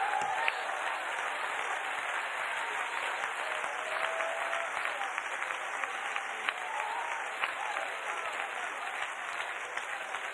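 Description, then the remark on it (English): An audience claps hands together at a preacher's call in a steady, dense wash of applause, continuous and fairly loud from start to finish with no voices standing out. “Come on and clap your hands.”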